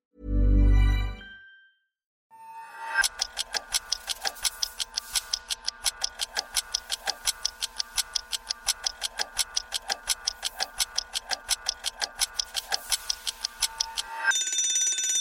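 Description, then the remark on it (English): After a brief low thump, a kitchen timer ticks in a fast, steady rhythm for about ten seconds, then a bright bell rings out loudly at the end. No voices. “Minutes on the timer, and the topic is alcohol, part two.”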